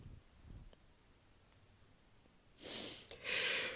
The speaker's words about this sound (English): Yeah. Y'all getting these yawns today, baby. It's Sunday morning, baby.